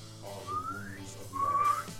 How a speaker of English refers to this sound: I was trying to do the whistle before. You got me.